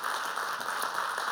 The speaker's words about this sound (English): So we just give a round of applause to all the people that make this place great.